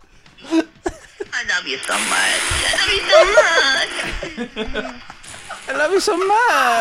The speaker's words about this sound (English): This is wet fart. It's just water. Yeah, it just sounds like someone stuck a mic under a waterfall.